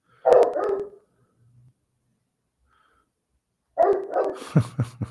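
A dog barks in two quick bursts of several sharp barks each, separated by a few seconds of quiet. The barking is fairly loud and close, with no one talking.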